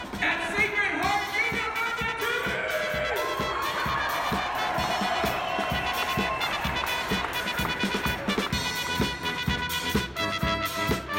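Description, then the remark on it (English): A large indoor crowd of students, parents and siblings cheers and shouts continuously at a family-weekend event in the Pitt Center basketball arena, with excited voices rising over a steady roar and rhythmic thumps underneath, echoing through the arena. “Head announcer … was fired up throughout the event and got the whole crowd pumped up to enjoy the entertainment”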